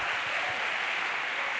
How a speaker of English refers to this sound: Come on, somebody clap your hands to the Lord. Because He's worthy.